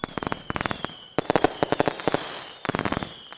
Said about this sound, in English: Colorful explosions filled the air around London.